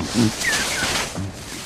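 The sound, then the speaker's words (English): Short, low grunting and groaning calls from a crab-eater seal in the pack ice zone surrounding Antarctica, two or three rough bursts over a steady, breezy background, moderately loud. “They like to grunt and groan.”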